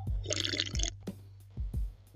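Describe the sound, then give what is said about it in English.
Someone sips a Monster energy drink: a short, bright slurp with a fizzy hiss early on, followed by a few soft, low gulps or thumps. No one speaks. “And I'm sipping a monster.”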